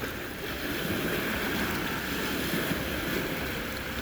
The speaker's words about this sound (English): The wind's blowing. You can see the waves.